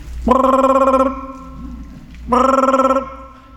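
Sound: telephone ringing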